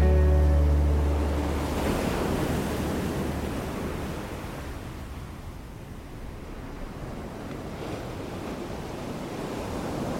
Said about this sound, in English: The storm clouds can gather darkly, and when the wind blows in hard and the breakers crash on the shore, the pull of the waves is strong.